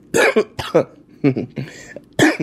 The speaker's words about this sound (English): So that explains my voice. And it explains why I'm always eating cough drops, why I'm coughing every fucking week.